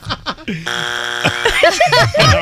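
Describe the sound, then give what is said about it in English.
A game show wrong-answer buzzer gives one harsh, steady, buzzy tone lasting over half a second, with short bursts of laughter and chuckling before and after it. “There's been so many buzzes, I can't even keep count.”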